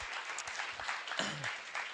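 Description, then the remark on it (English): A steady burst of applause from a group for a man who has just told a story, dense rapid clapping filling the moment at a fairly constant level, with a brief hint of a voice partway through. “Hey, let's give him an applause.”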